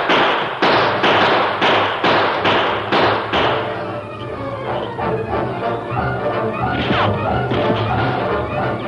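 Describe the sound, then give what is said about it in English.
A rapid string of loud gunshots rings out as men open fire through the windows of a building, about eight sharp cracks in quick succession, followed by a noisy, clattering stretch with scattered further shots. “After the opening volley of gunfire, the Lone Ranger tied Monk's hands despite his protests”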